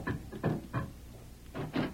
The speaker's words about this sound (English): Open this door. Just a second now. I'll have it open in a jiffy.